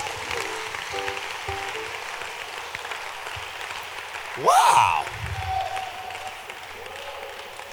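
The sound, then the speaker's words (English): A crowd claps their hands for the heroes in a dense, even wash of applause that carries through the whole stretch, with one voice calling out loudly partway through. “Clap your hands for the heroes.”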